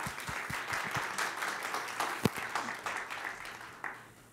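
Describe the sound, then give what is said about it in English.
An audience applauds steadily for a few seconds, many hands clapping in a dense, crackling wash with a couple of sharper individual claps standing out. “Can we clap on it?”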